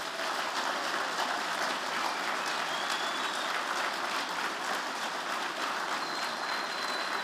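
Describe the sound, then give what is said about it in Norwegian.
A church audience gives a visiting team of men who serve Jesus sustained applause, a dense, steady wash of many hands clapping at even loudness for several seconds, with no speech over it. “Gi dem en skikkelig klapp.”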